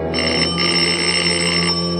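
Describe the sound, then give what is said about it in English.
The doorbell of a small house in New York City rings in one steady, unbroken electric peal lasting about two seconds, bright and metallic with a dense buzzing shimmer, fairly loud and with no voices. “While I waited for the doorbell to be answered, I scribbled a note on my card and dropped it.”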